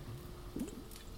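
Soft squishing and rubbing against a microphone, like fingers giving it an ear massage, with a brief moist swell partway through over a low, steady background hum.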